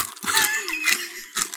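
Crunching of crispy food reheated in a microwave wrapped in wax paper, with a few sharp, crackly bites in an uneven rhythm and a faint low murmur underneath.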